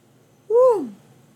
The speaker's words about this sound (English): Sorry, I didn't mean to yawn aggressively.